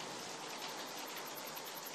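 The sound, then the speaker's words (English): Steady tropical rain drums on zinc roofs, a dense, even hiss of countless drops with no pauses, heard at a soft, constant level with no voices. “The man today has a melancholy weakness for the comforting whisper of crickets and frogs, tropical rain against zinc roofs, and nights turning to rivers.”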